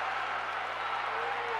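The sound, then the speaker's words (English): A volleyball crowd in a gym cheering at set point in a match between the Eagles and the Jaguars, a dense, steady roar of many voices blending together, sustained and fairly loud for the whole moment with no single voice standing out. “You can hear the crowd.”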